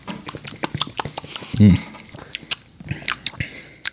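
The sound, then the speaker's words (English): A sip of Irish whiskey: scattered small wet mouth clicks and taps, then a short, deeper gulp in the middle, followed by more faint clicking, with a low murmur of voices underneath. “You taking a sip? Oh yeah, we going sip.”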